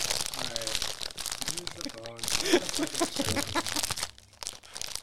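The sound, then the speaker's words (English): Loud, dense crunching of chips, an irregular crackly stream of crisp snaps that barely lets up, with brief bits of voices mixed in underneath. “I couldn't hear you over the loud chips.”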